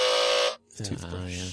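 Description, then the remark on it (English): An electric toothbrush gives a loud, steady, harsh buzz for about half a second, then cuts off abruptly; a person starts talking moments later. “That's the toothbrush.”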